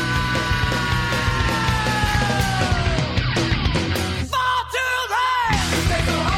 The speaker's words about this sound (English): But the music really ramps down quickly after that little climax of him actually screaming the name of the song.